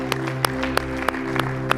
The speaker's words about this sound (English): Come on, yes, give Him that hand clap of praise together around this room.